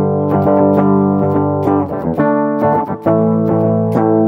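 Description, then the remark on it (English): A clean, undistorted guitar through a crunchy amplifier simulation with the effect turned off plays a steady run of plucked notes and chords, loud and ringing, with sharp picked attacks and sustained tones and no voices. “We can turn it off, it's clean sound.”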